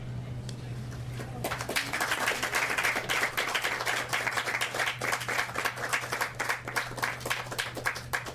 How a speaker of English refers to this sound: So I'm quite happy, if you feel inclined to applaud, I'm quite happy for you to wait till the end of my set.